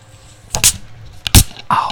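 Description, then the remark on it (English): A can of Flamin' Hot Mountain Dew is cracked open: a couple of sharp, bright snaps of the tab, then a brief fizzing hiss toward the end. No voices, just the fairly loud pops over quiet background. “Can I crack it?”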